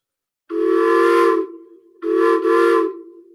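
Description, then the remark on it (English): A tunable whistle, tuned down to a low steamboat pitch, sounds twice: a long blast of about a second, a brief pause, then a second blast with a slight dip midway. It's loud and breathy, with a hissy edge and no talking. “And you could tune it down to be a steamboat.”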